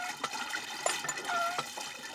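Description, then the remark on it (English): Water splashes and gushes in a steady stream from a hand pump on a farm without running water, with brief metallic squeaks from the pump handle cutting through the flow; the water is for livestock and household use. “We got water from hand pumps for both the livestock and for our own use.”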